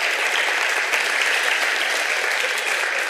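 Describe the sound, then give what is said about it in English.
An audience at a Christmas service applauds the kids steadily, a dense, even wash of many hands clapping at a constant loud level with no pauses or voices throughout. “Let's give the kids a special round of applause for being so well-behaved the whole time.”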